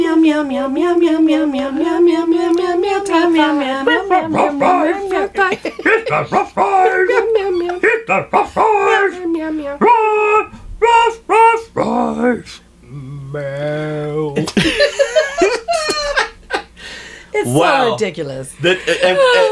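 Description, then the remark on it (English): A person mimics a dog, drawing out wavering howls and then letting loose a string of sharp, yappy barks, loud and playful, with a chuckle slipping in near the end. “Yes, I love my dog, wow, wow.”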